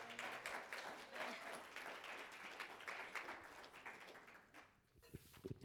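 A crowd at an Oikos gathering applauds steadily to welcome longtime friends, dense clapping for several seconds before thinning out and fading near the end.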